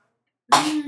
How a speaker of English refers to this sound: Bless you